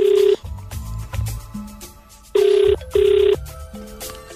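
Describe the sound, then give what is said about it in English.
An outgoing phone call's ringback tone: a loud steady beep, then after a pause a quick pair of matching beeps, with soft background music playing underneath. “answer the phone. Come on.”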